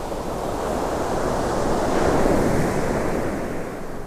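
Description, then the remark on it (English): Strong wind roars steadily outdoors, a loud, dense rush of noise heavy in the low end that swells briefly midway, with no voices or other sounds breaking through. “I moved to a courtyard across the street, less windy”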